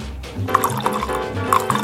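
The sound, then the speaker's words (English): Rum pouring into a glass, a short steady trickle with gurgling, rising tone as it fills, with music or low background sound underneath. “I'm sorry, I'm pouring my rum”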